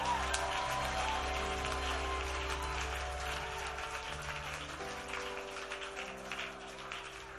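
A church audience claps in praise to the Lord, a dense, crackling wash of applause that holds at a fairly even level, with sustained low keyboard or organ chords playing underneath and no voices.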